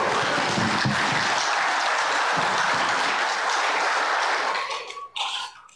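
An audience at a church baptism bursts into sustained applause, a dense, steady wash of many hands clapping that holds loud for several seconds before tapering off near the end.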